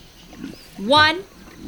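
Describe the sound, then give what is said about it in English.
Voices let out a single loud, rising roar lasting about half a second, imitating a lion, preceded by brief quiet murmuring and followed by fading background noise. “Look, reader, I think our roar worked.”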